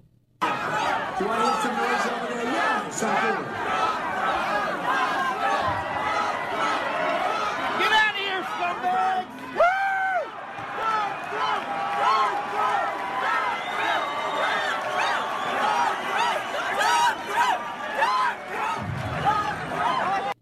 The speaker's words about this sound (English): Well, there's another video of Trump supporters yelling at protesters, and it got rowdy in the crowd again. And here is that video.